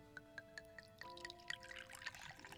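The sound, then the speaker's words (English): A drink is poured into a glass, starting with a few quick clinking drips before a steady gurgling pour with rising pitch as the glass fills, fairly quiet. “Now pour me another.”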